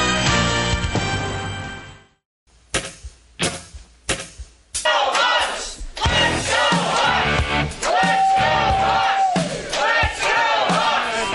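A stadium crowd roars and chants in rhythmic bursts while loud rock music with driving guitars plays underneath, the chant rising into a sustained cheer with a held whistle-like tone.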